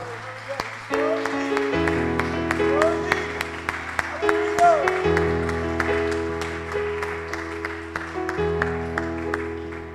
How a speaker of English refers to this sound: Why don't we just stop for a moment? Let's just give the Lord a hand clap of praise right now.